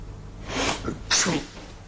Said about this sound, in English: Okay, …, you sneezed.